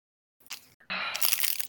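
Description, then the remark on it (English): Loud crinkling of a food wrapper being handled in bursts by a woman eating, with crunchy chewing mixed in. A short rustle, a brief pause, then a longer, denser stretch of crackling. “You're just gonna listen to … chew and fumble with her wrapper for a few minutes.”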